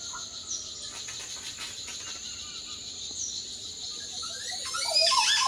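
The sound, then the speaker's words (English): A warbling, chattering call like audio being scrubbed, starting slow and speeding up into rapid, rising chirps that grow louder at the end, over a steady high insect-like drone. No one speaks. “And I have a video of it's like scrubbing through audio. Oh, like yeah, you start slow and then you go faster.”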